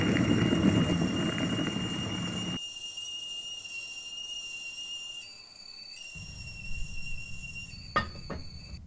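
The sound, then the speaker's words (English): A kettle whistles with a steady, shrill, sustained tone throughout as water boils for a drink, over the low rumble of boiling water that fades partway and returns, with a couple of sharp clicks near the end. “While you're doing all that, keep an eye on your water, and once it boils, drop everything in the mug and top off with your favorite sweetener.”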